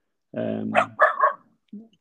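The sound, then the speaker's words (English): The speaker's dog lets out a drawn-out, whining bark followed by a couple of quick, sharp barks, then a brief quieter yip. “My dog.”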